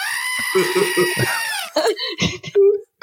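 A loud, harsh goat scream holds a strained, wavering cry for about a second and a half, then breaks into short, choppy vocal bursts that sound like laughter or chatter.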